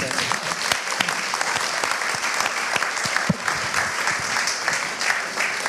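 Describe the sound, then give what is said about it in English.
An audience applauds steadily after an actor's word-perfect performance on a stage, dense clapping filling the space with a continuous, fairly loud patter that holds at an even level throughout, with no voices standing out. “Should we have another round of applause”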